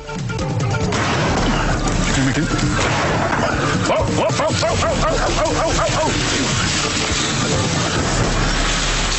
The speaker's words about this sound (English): The gunshots you heard, and the trumpeting, was the sound of Tony Macris shooting a sleeping elephant in the face.